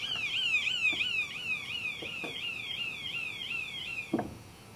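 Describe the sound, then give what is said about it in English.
A small electronic siren, put inside a half-inch-thick glass bell jar with air still inside for an air-pump experiment, warbles in rapid, repeating high-pitched sweeps. The tone is fairly faint and slightly muffled, with a few soft knocks and a thump toward the end. “Okay, so it's hard to hear the siren over the sound of the pump, but what I'll do is once it's pumped out, I'll turn the pump off, and then I'll let the air back in.”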